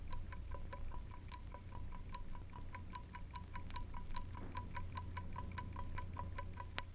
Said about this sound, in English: The rhythm of a clock's balance wheel can be heard in its steady tick-tock.